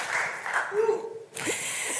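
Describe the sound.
Audience applause: a dense, steady wash of many hands clapping that carries through the whole two seconds, briefly thinning midway, with a faint voiced tone showing through partway.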